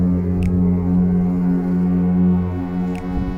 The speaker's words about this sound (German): Nebelschwaden sind im Hafen gelegen und wir haben uns der Stadt genähert, die wir da durch Lichter gesehen haben. Und plötzlich hat man das Nebelhorn gehört.